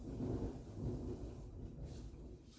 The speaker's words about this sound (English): Is that thunder?